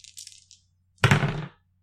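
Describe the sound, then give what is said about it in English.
Dice are rolled in a tabletop role-playing game, one action die and two challenge dice: a few light, high clicks and rattles, a brief pause, then a louder half-second clatter as they tumble and land on a hard surface. No one speaks. “And now we're going to roll plus heart.”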